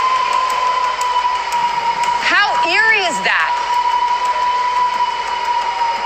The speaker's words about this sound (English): We're now inside the casino, and that is the wind whistling through the building. Do you hear how loud that is?